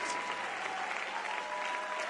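A church audience claps hands together as a shout of praise unto the Lord, a steady, dense wash of applause, loud and continuous throughout with no distinct individual claps standing out.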